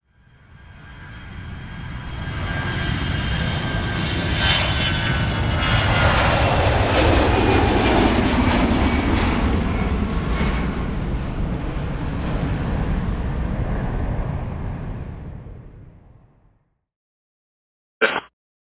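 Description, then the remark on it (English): A small propeller aircraft circles while the tower visually confirms its landing gear has been deployed; its engine drones past, swelling in to a steady, loud roar, then fading out abruptly, followed by a brief click. “The aircraft circles and the tower visually confirms that the gear has in fact been deployed.”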